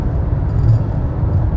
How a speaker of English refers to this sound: And now we're car. In the car. On our way to our next place of stay.